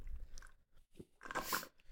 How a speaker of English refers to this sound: Let me finish up this mouthful of bagel.